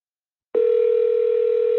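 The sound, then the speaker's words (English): A steady, loud telephone dial tone on a call to a caller whose cell phone bill was not paid starts abruptly after a half-second of silence and drones on unbroken at a single pitch, with no voices. “Oh, I thought the person answered.”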